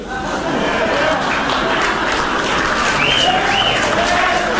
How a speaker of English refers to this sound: The laughs, the groans, then the couple of cheers, smattering of applause, more groans.